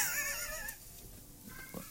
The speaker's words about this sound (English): Okay. Fucking cat. That's it. Anyone want a cat?